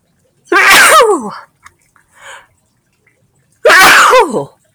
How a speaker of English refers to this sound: Oh, I'm going to sneeze.